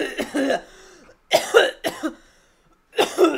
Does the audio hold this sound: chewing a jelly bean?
no